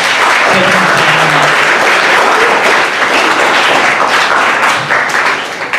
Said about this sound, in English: So, as we get ready to go back into worship, I want you to give these guys a huge round of applause.